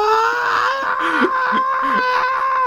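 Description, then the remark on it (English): A person's voice imitates buzzing cicadas, making a steady, high, nasal drone that holds without a break for a few seconds, fairly loud, with slight wavering in pitch. “I mean, you hear the cicadas, you know it's hot and sticky outside.”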